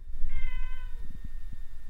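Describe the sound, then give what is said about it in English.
A single drawn-out meow from a female pet cat at home, clear, followed by soft low thumps and rustling noise with no talking. “So I'm going to, you can hear her there, can you?”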